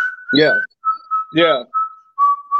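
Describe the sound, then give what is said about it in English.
A person whistles a short tune in clear, steady notes that shift slightly in pitch, broken up twice by brief bursts of a voice talking. “I came up with the idea, but for some reason, like, I'm whistling like a motherfucker now, but I couldn't do that shit.”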